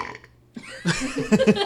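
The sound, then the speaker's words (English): A loud, drawn-out burp after drinking a beverage, rumbling and gravelly with a few rough pulses, following a brief quieter sound at the start. “But burps like shit.”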